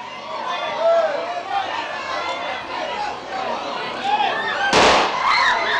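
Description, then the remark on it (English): A dense crowd murmurs and chatters continuously at the packed Kyiv railway station in Ukraine during a wartime evacuation, with one sharp, loud bang or burst cutting through near the end before the babble carries on. “Moments like these at Kyiv station.”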